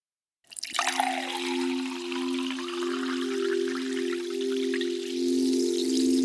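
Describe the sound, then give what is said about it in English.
Liquid pours steadily into a bottle, a continuous splashing stream with a resonant ringing tone that holds for several seconds without pause; the bottle fills halfway and then overflows as if full. “You just pour it in, Felix. Here, look. It fills halfway and then it just pours over like it's full.”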